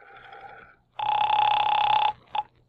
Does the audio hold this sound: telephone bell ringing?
yes